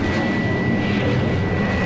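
A loud, steady roar of a supersonic robot plane flying past through the skies over New York fills the whole moment, a dense rushing engine noise with a thin whine riding on top and no voices.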